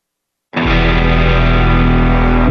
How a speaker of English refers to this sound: But I'm going to play one of his old songs with his old band